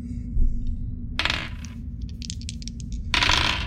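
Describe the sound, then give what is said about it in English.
Several dice, rolled for three attack shots in a tabletop game, clatter and rattle across a hard surface in quick bursts, with sharp little clicks between them, over a low steady hum. “That's a lot of dice.”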